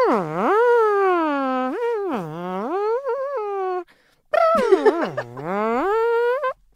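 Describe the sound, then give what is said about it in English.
A fart imitates whale song: two long, moaning tones that swoop low, rise and dip again, loud and wavering, with a short pause between them. “But yeah, the whale sound is a very sort of...”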